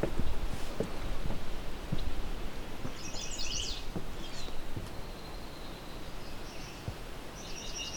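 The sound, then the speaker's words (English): A swamp sparrow sings a few short, rattling trills of repeated notes in a shrubby wetland thicket by a wooden observation tower, over a steady low outdoor rumble, with no one talking. “Go, we have a swamp sparrow.”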